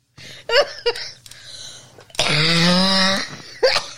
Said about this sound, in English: Is there gravel in your throat? What the fuck? Why do you sound like a cement mixer when you're coughing? What is going on?